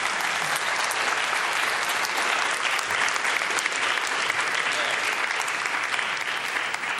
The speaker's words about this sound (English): I'm so glad you did that. I'll be able to say to Dennis, I got a clap too.